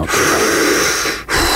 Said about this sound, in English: 5 deep, slow breaths. Breathe in and hold it. Then as you exhale, think about letting go of all your stress and anxiety.